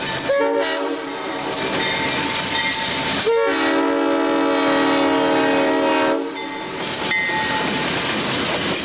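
A train horn blares in long, sustained chords, pausing briefly before sounding again, over the steady rumble and rattle of a passing train. Loud, with no voices.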